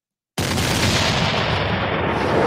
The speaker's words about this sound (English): There you go. Fire those cannons.